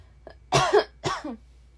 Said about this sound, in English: Hold on, I need a cough.